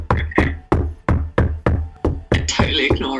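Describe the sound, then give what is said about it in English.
Firm knocking on a front door, about eight solid raps in a steady rhythm, fairly loud, growing more hurried and cluttered at the end. “there's someone at the door for you.”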